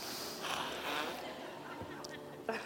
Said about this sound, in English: Can I blow my nose real quick? Go for it. It's your wedding. Sorry.